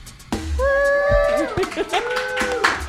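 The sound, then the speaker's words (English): An audience at the Pleasure Chest in New York City cheers, with a long, rising vocal whoop and scattered hand claps, loud and lively for a few seconds. “Yeah, you guys can come hang out or just clap from there for posterity.”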